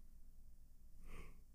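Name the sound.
big yawn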